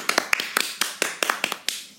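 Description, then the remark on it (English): A short burst of applause: roughly a dozen crisp, sharp claps in a slightly uneven rhythm, each snapping off quickly over a faint hiss, with no voices. “And I'm sure your listeners will join in for a round of applause for this milestone on the number of podcasts.”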